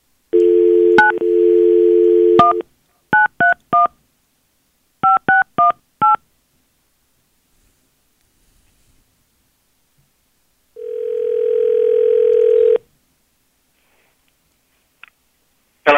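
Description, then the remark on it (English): A steady dial tone hums, then a quick run of telephone keypad beeps in short bursts, followed by a long, even ringback-style tone and silence, as radio station B93.7 hosts call a man on the phone. No one speaks. “So we're going to go ahead and call him right now.”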